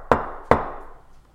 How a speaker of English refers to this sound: It is then that you get a knock on your door.